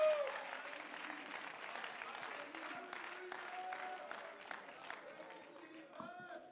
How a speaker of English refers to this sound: Come on, if you agree with that, you ought to clap your hands and give praise to the Lord.